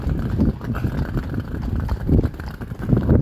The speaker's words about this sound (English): Oh, here's some horse-drawn tourists clopping past.